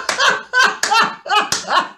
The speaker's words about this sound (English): Now, to be mentioned, I that was just fantastic. A really big round of applause.